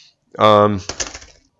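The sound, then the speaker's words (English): A brief vocal exclamation, then a phone drops onto a keyboard with a quick burst of clattering key clicks that fades out within about half a second. “Shit, I dropped my phone on the fucking keyboard.”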